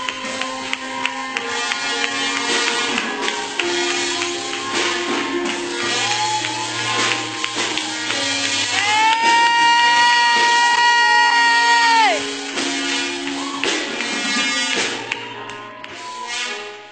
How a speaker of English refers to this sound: Come on, clap hands for the bishop.